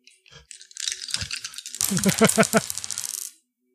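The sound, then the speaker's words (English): Several dice clatter and rattle across a hard surface for a resources roll, landing on two 2s and two 4s, in a quick burst of clicks lasting about three seconds, with a brief murmured voice partway through. “How did dice rolls work again?”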